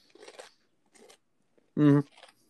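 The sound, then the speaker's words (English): Crunching on a nacho cheese Dorito chip: a few short, dry, crackly bites spaced apart, with a brief, louder voiced murmur breaking in near the end. “I just ate a single Dorito.”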